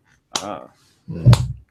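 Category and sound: human body sound, slow hand clapping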